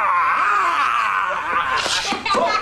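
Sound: voice imitating a roar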